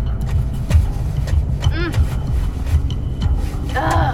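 A steady low rumble of a car on the move, broken by several muffled thumps and knocks close by, with a couple of brief strained vocal sounds mixed in.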